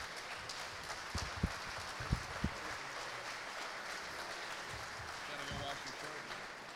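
A crowd applauds steadily, a dense wash of many hands clapping with a few sharper, louder claps standing out near the start, sustained at an even level throughout.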